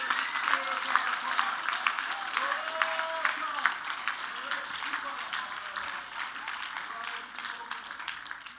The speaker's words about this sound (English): Come on, give Jesus a hand clap right now. He's worthy.